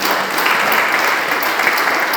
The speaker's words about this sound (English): And I just want to give him a clap. He's doing tremendous today.